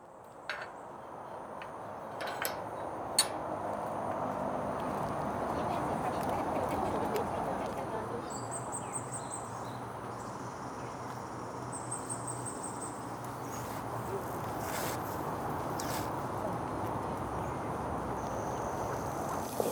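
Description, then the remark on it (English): Birds chirp intermittently in an outdoor community garden, with short high calls repeating over a steady, fairly loud bed of ambient noise, some calls sharper than others. “鸟语花香. Birds and the smell of flowers.”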